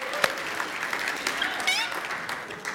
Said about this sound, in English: You ready to see some smoke? You can do it. Cheer him on now.